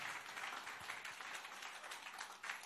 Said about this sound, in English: So, if you are clapping, clap. So, we clap together.